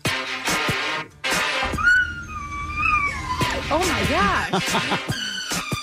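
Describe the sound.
A dog named Riley howls and yips in wavering, rising and falling tones over a loud pop song with a steady beat, its voice sliding in arcs alongside the music.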